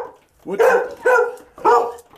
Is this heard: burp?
no